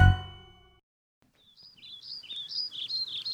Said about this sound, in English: It's such a nice day. You walk outside and look around. The birds are chirping. The wind is blowing ever so slightly.